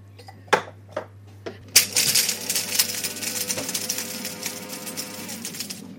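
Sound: coffee beans being ground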